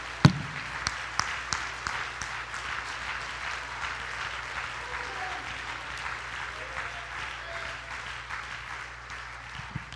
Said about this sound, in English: I want somebody to clap your hands tonight like you really, really mean it.